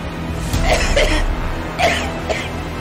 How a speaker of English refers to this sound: What's he doing? He's coughing!